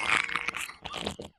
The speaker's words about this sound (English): Are you telling me that sex robots can fart? Absolutely.